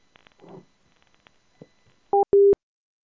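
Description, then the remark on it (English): A phone line rings on an outgoing call to a gas station on Washington: one loud double-burst ringback tone, two short electronic pulses in quick succession, after a moment of faint clicks and rustling. “That's what you just dialed.”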